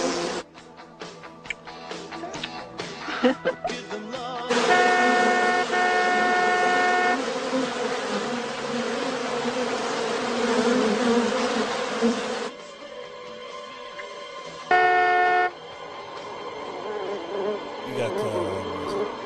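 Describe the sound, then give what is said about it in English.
A dense swarm of bees attached to a billboard buzzes loudly and steadily, with a car horn, bumped by people inside the car, blaring over it for several seconds and then a short second honk as the droning continues. “So they're bumping into the horn as they're making out, which is disturbing the nearby bees who are attached to a billboard there.”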